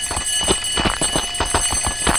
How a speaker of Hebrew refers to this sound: אתה שומע את הפעמון הזה, זה פעמון שאתה לא יכול להתחמק ממנו.